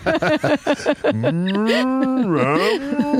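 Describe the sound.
A quick string of short, choppy vocal bursts leads into a long, drawn-out cow moo that rises and wavers in pitch, loud, lasting a couple of seconds.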